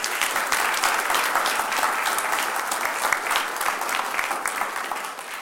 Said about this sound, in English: I'd like for us to just give Kyle some applause.